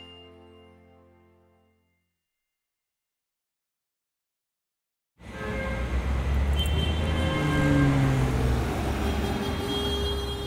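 A brief fading tone gives way to a few seconds of silence, then loud, steady traffic on a busy downtown city street among tall buildings kicks in: a dense rumble of car engines with passing-vehicle whooshes and rising motor tones, lasting to the end.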